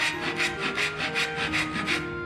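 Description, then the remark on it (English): A hand saw rasps back and forth through wood in a steady rhythm, about six even strokes of gritty scraping with no voices, as carpenters rebuild the fire-ravaged town of Campbellton. “The Campbellton Graphic newspaper described the reconstruction as saws and hammers could be heard at any hours of the day or night.”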